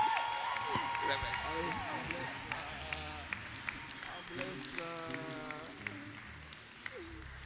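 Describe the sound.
An audience gives a standing ovation to welcome a reverend, clapping and shouting in a dense, steady wash of cheering voices with scattered sharper claps running throughout at a fairly even loudness.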